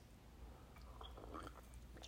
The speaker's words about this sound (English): Wow. Just took a sip of coffee. Wow, that's good stuff.